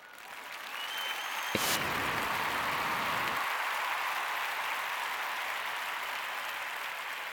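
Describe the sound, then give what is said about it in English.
A crowd applauds steadily, a dense wash of many hands clapping that swells in quickly and holds at an even, moderately loud level for several seconds without any voices. “Hey, clap if that was the greatest thing you've ever heard.”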